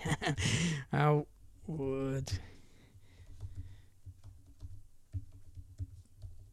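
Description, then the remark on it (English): Irregular clicking of keys on a computer keyboard, steady, following a brief burst of voice at the start; the soft taps continue on their own for several seconds. “Can you hear that, everyone? This is just serious typing going on.”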